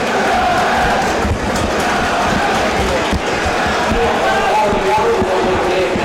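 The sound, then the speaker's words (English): A dense, steady roar of a football crowd, loud and continuous, with overlapping shouts, chants and scattered cheers rising above the constant din throughout. “Is that crowd noise being played?”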